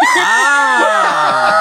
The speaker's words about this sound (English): Start screaming uncontrollably.